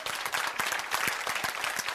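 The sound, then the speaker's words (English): A church audience applauds steadily during a sermon, many hands clapping in a dense, continuous patter that stays fairly loud from start to finish, with no voices standing out. “Is that the best clapping y'all can do?”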